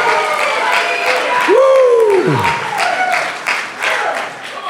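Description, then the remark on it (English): A church audience claps loudly and steadily in praise of God throughout, a dense patter of many hands, while one voice lets out a long whoop that swells and falls in the middle. “Come on, give him a good clap up in it.”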